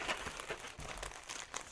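Crisp crinkling of paper in quick irregular bursts, as a sheet of paper that came in a package of Five Finger Jerky is unfolded and handled, with no voices present.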